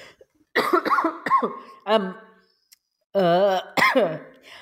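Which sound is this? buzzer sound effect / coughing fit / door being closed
coughing fit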